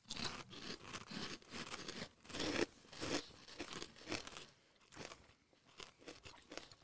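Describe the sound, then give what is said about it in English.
Crunching and chewing of crispy queso-flavored snack chips, a steady run of sharp, crackly bites repeating every half second or so, loud with no talking. “I didn't get as hard of pieces as I was chewing them.”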